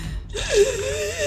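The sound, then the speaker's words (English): A voice imitates a wheezing, labored breath: one drawn-out, strained rasp with a thin whistling tone running through it, fairly loud, lasting about a second. “having choked on enough of these things, is slowly becoming aware that she's, like, not breathing well.”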